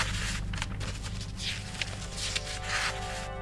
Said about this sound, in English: We're still today opening those boxes, pulling out the fragments, piecing them back together and deciphering them. This is what 2,000-year-old paper sounds like.